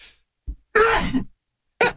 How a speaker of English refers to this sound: It's like talking about it just made me sneeze. Bless you.